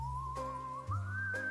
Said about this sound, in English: Waiting in the checkout line, she heard a familiar, off-tune whistling to the Muzak.